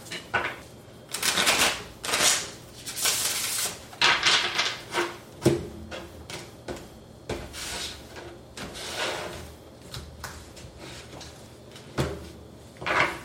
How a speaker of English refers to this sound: I'm going to shuffle one more time.